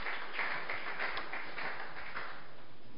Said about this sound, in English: I see you coming to that level. Amen. Clap your two hands together for Jesus.